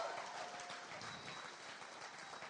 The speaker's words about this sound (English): oh, if you're going to clap, you got to clap.